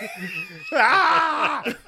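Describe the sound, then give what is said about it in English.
A person lets out a loud, strained, scream-like singing wail that jumps upward after a lower hum, held for a couple of seconds before breaking off. “Scream singing.”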